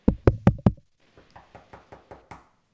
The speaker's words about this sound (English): Get that knock on the door.